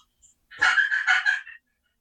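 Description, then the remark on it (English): A hen turkey gives a short series of raspy yelps, about four notes run together over roughly a second, clear with no talking. “How many hens do you hear doing this right here?”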